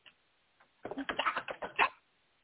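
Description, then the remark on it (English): A quick run of clattering keystrokes on a computer keyboard, about a second of busy, uneven tapping after a couple of faint isolated clicks, sounding slightly muffled as if heard over a phone line. “Listen, you're typing too damn loud.”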